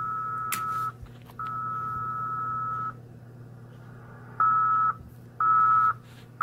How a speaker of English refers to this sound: If you listen, that is very slow Morse code. It's about a half a word per minute. There was a K. That was a U. That was a B.